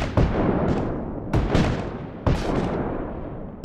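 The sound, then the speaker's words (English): Heavy artillery booms in a steady succession, several deep cannon blasts with sharp onsets and long rumbling decays that overlap into a continuous roar, loud, with no voices; cannon fire flying over a house and exploding above advancing Confederate troops. “And then you would hear the explosive sounds of artillery”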